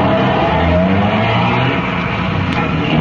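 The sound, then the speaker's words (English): A car engine rumbles loud with a steady, dense roar as a police car pulls out of the police garage in the early morning hours and drives off into the city. No one speaks. “By 5 minutes past 2, half the dragnet crew pulled out of the police garage and scattered over the city to their places.”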